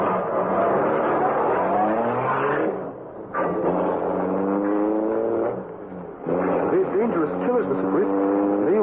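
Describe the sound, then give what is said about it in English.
A car engine roars loudly at high speed as the car follows another car and speeds up to pass it, its pitch climbing and surging as it revs hard, easing briefly midway before accelerating again. “Speed up and pass them, Cato.”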